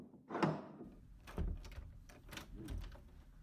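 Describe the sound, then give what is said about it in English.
A prisoner's door is opened with a sharp clunk of the latch, followed by a few rattling, scraping knocks as it swings. Moderately loud, with no voices. “I'm about to open the door.”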